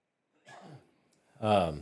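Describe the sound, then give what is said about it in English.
A short cough, then a louder, rougher cough or throat-clearing burst a moment later, with no talking in between. “Sorry, I had to cough.”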